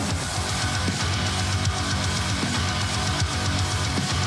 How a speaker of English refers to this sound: I mean, it is art metal. I feel like that the layers of sounds that are used, the synthesizers, oh, so good. I dare you to ride around with your truck windows open as loud as fuck with this.